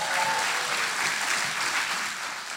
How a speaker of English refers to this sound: And then, of course, Jesus over everything. We can all cheer for that, right?